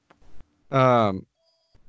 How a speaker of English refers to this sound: Oh, my phone's ringing. That's obnoxious. Oh, sorry.